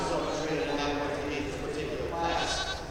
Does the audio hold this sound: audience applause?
no